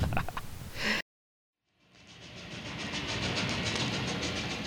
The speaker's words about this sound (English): Ride this train to Pine Ridge, Mississippi.